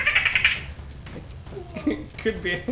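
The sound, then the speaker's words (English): A raccoon gives a short, high chittering trill, rapid pulsed squeaks lasting about half a second, followed by softer talking voices. “The answer is a raccoon.”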